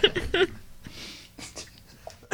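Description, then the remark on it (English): A harsh, wheezy cough bursts out at the start in a couple of quick rough hacks, followed by softer breathy rasps and faint scattered noises. “I'm going to cut that ugly cough out of there.”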